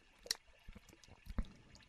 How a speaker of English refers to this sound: As the waves lap the side of your boat